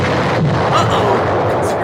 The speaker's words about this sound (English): Explosion!